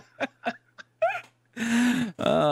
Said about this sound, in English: The cat tries to interrupt the podcast, I think that's transition. I just was like, I felt her by my toes, and she's starting to bat.